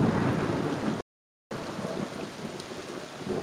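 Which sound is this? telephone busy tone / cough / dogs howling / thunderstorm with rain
thunderstorm with rain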